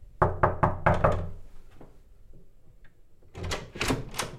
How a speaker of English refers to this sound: Well, I can't tell you quite how apprehensive I feel to kind of knock a hotel bedroom door where I know a bride is being made up ready for her wedding. But here goes.